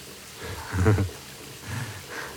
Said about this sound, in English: I pull you into the shower and under the stream of hot water with me.